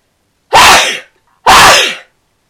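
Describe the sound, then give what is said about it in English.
Two loud, explosive sneezes in quick succession, each a sharp breathy burst that fades out, with a brief silence between them and no talking. “I'm gonna sneeze.”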